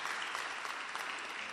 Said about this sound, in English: Clap your hands for her.